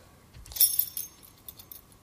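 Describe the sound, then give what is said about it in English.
A bunch of warehouse keys jangles briefly, bright metallic clinks clustered in a short shake near the start, followed by a few lighter scattered jingles, quiet, with no talking. “These keys represented 1 year.”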